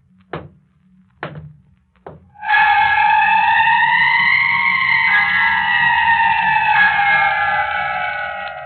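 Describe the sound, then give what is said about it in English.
Three slow, hollow footsteps thud on wooden porch boards, then a loud, sustained wavering tone with a layered, eerie quality swells in and drowns out everything else. No one speaks. “I heard footsteps on the porch.”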